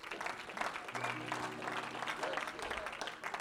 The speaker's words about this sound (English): And everybody say, hallelujah. Clap your hands on the Lord and you may be seated.